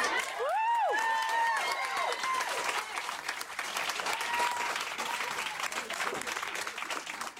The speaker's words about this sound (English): This might be the most enthusiastic applause and cheering of the whole night. I imagine it's cathartic for a lot of the non-black parents in the audience.